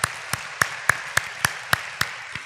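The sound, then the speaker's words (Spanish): An audience gives a clap offering to the Lord for the Word of God, clapping together in a steady, even rhythm, about nine sharp synchronized claps in quick succession at moderate volume, with no talking over them. “Vamos a darle un aplauso al Señor por la palabra de Dios.”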